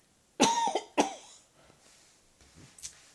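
A woman gives two sharp coughs about half a second apart, each with a raspy tail, followed by a softer throaty sound a moment later, with quiet around them.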